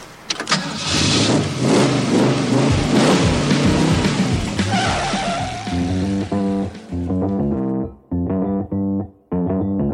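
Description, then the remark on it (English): A car engine roars to life loudly, then revs repeatedly in sharp bursts, its pitch climbing and dropping between throttle blips as it accelerates. “If you had access to a car like this, would you take it back right away?”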